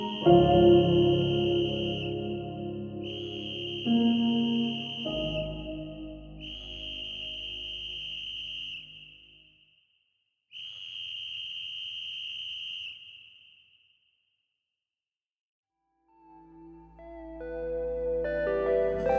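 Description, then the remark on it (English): A whistle blown in four long, steady blasts of a high, piercing tone, each followed by a short gap, with music playing under the first ones and returning after a stretch of near silence. “I imagined his dry lips around the whistle and the dispirited emergency crew's layers of rubble above him, leaping up, shouting, "Someone's down there!”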